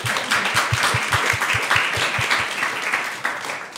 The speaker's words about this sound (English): To come join us for this International Women's Day. Will you give them all a big round of applause?